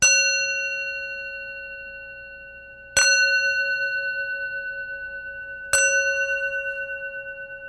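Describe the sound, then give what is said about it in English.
A small mini brass sound bowl is struck three times, each strike blooming into a bright, shimmering tone with a gentle wavering pulse that lingers and slowly fades. No talking. “I do have these sound bowls, my minis.”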